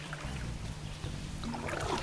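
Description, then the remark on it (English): Steady splashing and dribbling of water against a low hull hum, like a paddle dipping and lifting beside a kayak on a pond about 3 feet deep, continuous for a couple of seconds with no voices. “Plenty of splashing going on in the background.”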